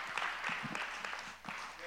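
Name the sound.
audience clapping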